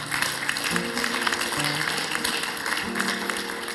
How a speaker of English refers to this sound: Why don't you give that young fella a round of applause, folks?